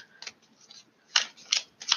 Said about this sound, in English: I'm shuffling for a few more cards.